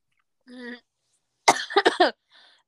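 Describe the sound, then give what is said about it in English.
A brief voiced murmur, then a harsh fit of coughing: one sharp explosive cough followed quickly by three or four rougher, hacking bursts, ending with a faint trailing breath. “You're welcome for enjoying you with my wonderful coughing and eating wild cherry Listerine's cough drops.”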